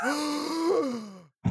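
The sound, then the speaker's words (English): A single drawn-out vocal gasp of surprise, a voiced, wavering exclamation lasting over a second, fairly loud, followed after a brief pause by a short breathy intake. “Gasp. Oh my. Awe.”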